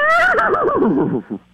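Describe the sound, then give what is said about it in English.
A person loudly imitates a horse's whinny, a single wavering cry that starts high, quavers downward over about a second, and ends in a short low grunt. “I mean, that's a good horse sound.”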